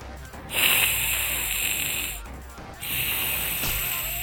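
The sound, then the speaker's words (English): A person imitates a crocodile's hiss twice, each a long, loud, breathy rasp lasting over a second, separated by a brief pause. “Hiss twice if you will not hurt us.”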